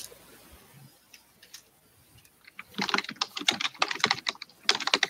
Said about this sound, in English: I hear her typing.